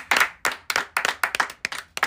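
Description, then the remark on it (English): Audience clapping to welcome a person joining the show: a brief run of sharp, crisp hand claps in a slightly uneven rhythm, moderately loud, with no voices over it. “Give it up for”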